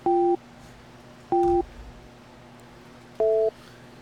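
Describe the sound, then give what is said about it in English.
Three loud touch-tone beeps as a man dials a phone number, each a short two-note tone lasting about a third of a second, spaced a second or more apart, with the last one pitched differently, over a quiet background hum. “I think he's dialing, and it's the way to conceal the number.”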